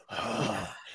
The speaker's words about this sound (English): I might have something for you guys. Heavy breathing. You have some heavy breathing.